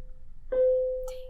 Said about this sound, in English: Yeah, sorry about the bell.